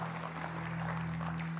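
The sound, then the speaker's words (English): An audience applauding together after worship at a morning service, a dense, steady wash of many hands clapping at once with no single claps standing out, over a low constant hum. “Yeah, you can clap.”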